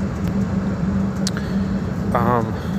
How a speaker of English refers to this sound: In these times when I have nothing to do, I'm on my bus